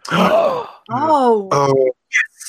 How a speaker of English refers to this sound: Collective gasp.